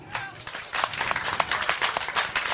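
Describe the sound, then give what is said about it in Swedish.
An audience claps together to vote for the candidate in the green shirt, a steady burst of applause, many hands striking in quick, overlapping beats at a moderate level, with a few louder claps standing out. “Alla som tycker att kandidaten i grön tröja ska vinna, klappar nu.”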